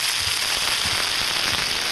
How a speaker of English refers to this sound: Why didn't I get that hot iron skillet of smoky meat?